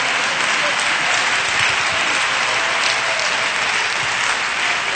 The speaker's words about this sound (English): Oh, come on, let's clap our hands and praise the Lord.